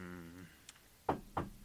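Three sharp knocks on wood, close and fairly loud, evenly spaced in quick succession, following the tail end of a voice that fades out just before them.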